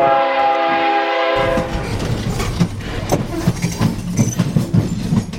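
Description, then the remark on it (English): A loud, sustained train horn blares for over a second, then gives way to the steady rumble of a passing train with rhythmic clacking wheels, prominent. It is the train to Chicago that Zimroe Smith takes. “Zimroe Smith takes the train to Chicago.”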